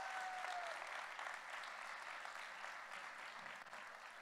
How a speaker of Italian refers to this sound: Facciamo un applauso a Vittoria.